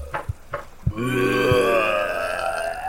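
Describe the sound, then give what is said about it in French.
A voice imitates a zombie moan: a few short guttural grunts, then one long, loud, rasping groan that drones on and slowly sinks in pitch. “Gémissaient les zombies, voulant entrer pour déguster Bénédicte.”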